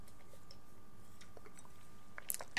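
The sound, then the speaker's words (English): Someone quietly takes a drink of water, ending in a few small wet clicks and a swallow, with no talking. “Take a drink.”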